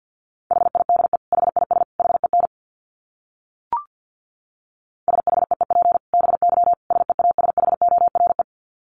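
Morse code tones at 50 words per minute: a single mid-pitched beep keyed on and off in rapid dots and dashes, in two bursts separated by a pause with a faint click, and no voices.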